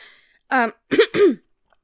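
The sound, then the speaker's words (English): A short burp: one brief voiced gurgle followed by two rougher, throaty bursts in quick succession, fairly loud against silence with no talking. “You can cut my burp out.”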